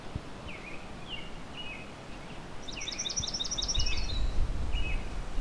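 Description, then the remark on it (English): A swamp sparrow sings a brief, even trill of quick repeated notes, while other birds chirp scattered single notes around it over a low outdoor rumble. “There's our swamp sparrow.”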